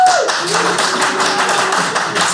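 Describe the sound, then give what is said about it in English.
Dense audience applause fills the space as the audience votes on whether they would prefer the Terminator or Vladimir Putin as a friend: a steady wash of many hands clapping at once, with a few high whoops and cheers rising above it before it tapers slightly. “So please applaud now if you think it would be the Terminator or Vladimir Putin.”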